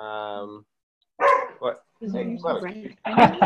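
A winery's dog barks in a few sharp, irregular bursts, with a drawn-out whining yelp at the start and short pauses between the barks.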